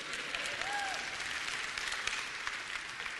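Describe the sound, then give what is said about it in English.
An audience applauds steadily, a dense wash of clapping hands that holds at a fairly even level throughout, with a brief faint whistle-like tone rising and falling early on. “If you can applaud that, that would kind of...”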